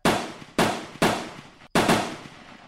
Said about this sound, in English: That was far away. That seems closer. We sat there motionless, listening to the gunfire.